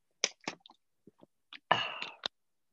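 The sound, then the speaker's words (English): A drink mix added to water is shaken with a couple of sharp rattling shakes and a few small clicks, then sipped in a longer wet slurping sip followed by a short burst. No one speaks. “Here, a little bit of a shake there and a little sip.”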